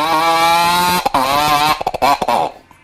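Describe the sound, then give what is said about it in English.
Someone imitates a two-stroke motorcycle engine with their voice: a loud, buzzy drone that holds steady, then breaks into choppy, sputtering revs before cutting off. “That really did sound like a motorcycle, though.”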